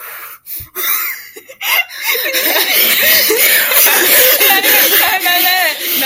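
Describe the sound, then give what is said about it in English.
A voice imitates loud, heavy breathing: rasping, wheezy huffs run together for several seconds with a few brief pauses, edging toward a breathy chuckle. “And he all of a sudden heard, like, really, really loud breathing noises.”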